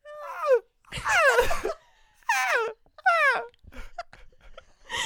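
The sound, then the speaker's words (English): People imitate seagull calls with their voices, making about four loud, squealing bursts that slide downward in pitch, separated by short pauses, then a few faint vocal sounds at the end. “Let's do our best seagull noise.”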